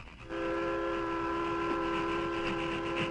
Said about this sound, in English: Train nearly reached top of slope. And still no sign of thieves. I wonder if they've learned that this part of the track is being watched. The engine reached the crest of Jackknife Hill and continued westward without incident.